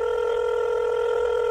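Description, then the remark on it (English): A telephone ringback tone hums steadily throughout, a continuous electronic ring heard through the line while a call rings out, with no voices present. “We're going to try to get on the phone.”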